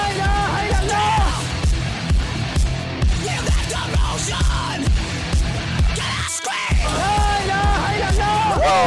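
A crowd screams and yells loudly and continuously, with high wavering cries layered over a steady driving beat. There is a brief dip near the end before the shrieking surges back.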